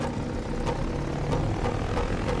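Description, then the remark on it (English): Propeller plane engines rumble low and steady as pilots run to their planes, broken by a few irregular sputtering pops as the engines kick over and catch, with no voices. “The pilots sprint to their planes while onlookers cheer or sob with emotion, while engines sputter and kick over.”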